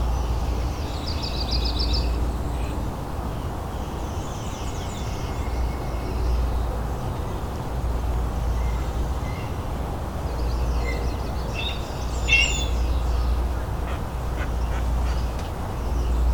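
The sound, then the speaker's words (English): A fish crow gives a few short, nasal calls at intervals while chasing a red-tailed hawk flying over, over a steady low rumble of outdoor background noise. “Yeah, sounds like a fish crew.”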